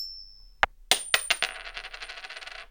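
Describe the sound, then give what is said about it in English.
A coin is flicked with a faint ring in a toss to pick between two movies, then lands with a sharp clink, bounces a few times and rattles into a fast, fading spin on a hard surface. No one speaks. “I'm going to go, let's stick Rain Man on heads.”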